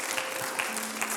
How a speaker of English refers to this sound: Can you give the Lord another hand clap of praise in this house?